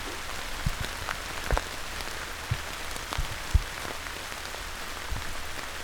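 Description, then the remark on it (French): Heavy rain falls in large drops on green vegetation in a mountain area, pattering steadily, with scattered large drops striking in distinct irregular taps over a continuous wash of rainfall. No voices. “Lorsque la pluie tombe à grosses gouttes, j'ai une belle occasion de dévoiler la végétation autour de moi.”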